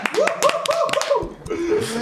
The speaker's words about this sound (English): Round of applause for Felipe Drugovich!